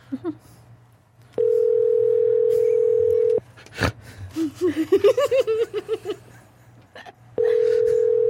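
A phone line rings out with long, steady ringback tones separated by a pause, unanswered, while someone laughs and snorts loudly in between the rings.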